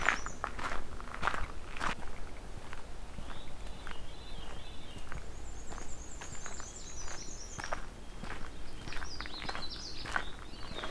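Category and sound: bird, black-and-white warbler singing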